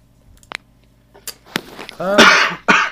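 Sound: sneeze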